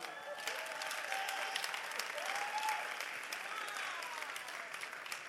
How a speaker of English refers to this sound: And clap for the Christmas.